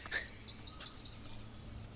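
Thin, buzzy songs of a golden-winged warbler and a black-throated green warbler ring out high and fairly faint, a quick series of rasping buzzes repeating in rhythm over a low rumble of background noise.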